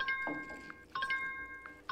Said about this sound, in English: Oh, yeah. The drinking dong, or the drinking ding. The drinking bell.